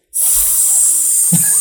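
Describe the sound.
A voice imitates a snake's hiss: one long, steady, loud sibilant sss held for over a second, alone, with a faint low breathy catch near the end.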